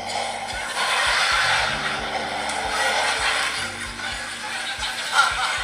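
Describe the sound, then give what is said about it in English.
A voice imitates towels tumbling in a dryer: a steady, breathy whooshing hiss with soft, irregular low thumps repeating underneath for several seconds, moderately loud throughout. “Maybe the sound of the dryer with the towels.”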